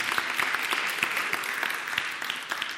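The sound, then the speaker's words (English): A crowd of people who pay their tithe claps for themselves, a dense patter of many hands with crisp, overlapping slaps at an even loudness throughout, and no voices over it. “If you pay your tithe, clap for yourself because God is about to be gracious to you.”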